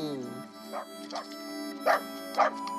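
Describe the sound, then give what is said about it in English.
A mutt gives about four short, sharp barks, spaced irregularly, the last two louder, while a person's voice talks steadily underneath. “Beautiful animal, mammal, canine, dog, mutt.”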